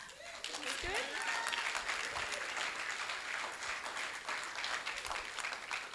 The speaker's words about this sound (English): So why don't you give her a big cheer?